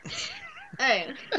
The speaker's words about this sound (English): Oh, you've let the cat in.